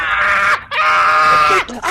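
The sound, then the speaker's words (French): An old woman screams insults, apparently in Spanish, loudly: two long, strained, wailing cries separated by a brief break, then a shorter yelp at the end, her voice harsh and shrill. “Tu vois qu'elle est en train d'hurler des insanités manifestement en espagnol, on ne comprend rien du tout à ce qu'elle dit.”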